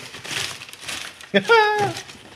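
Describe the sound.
Lots of wrapping paper crinkles and rustles in short, uneven bursts for about a second as a Christmas gift from a very small box is unwrapped, then a voice breaks in with a brief, drawn-out exclamation over faint continued rustling.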